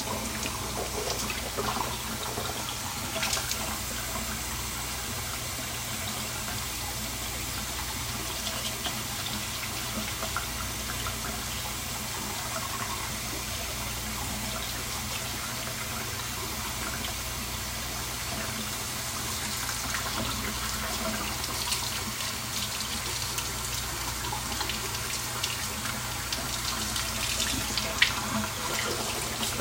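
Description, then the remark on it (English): A faucet runs steadily into a sink for about thirty seconds while someone brushes their teeth, a continuous hiss and splash of tap water with no talking. “Yes, I know, all that water I wasted.”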